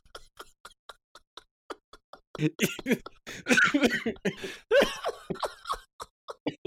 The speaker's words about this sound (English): Yeah, you really got me coughing.